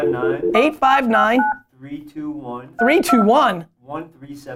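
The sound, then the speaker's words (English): A few short electronic keypad tones beep as a phone number in Lexington is dialed, mixed in with a person talking at moderate volume. “We're going to Lexington.”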